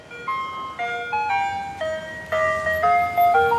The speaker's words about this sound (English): And the sound of the ice cream truck on a hot summer's day.